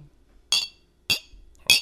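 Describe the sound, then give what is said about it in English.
Glasses clink together three times in a toast, each a bright, ringing chime up close to the microphone, spaced roughly half a second apart. “Can we cheers?”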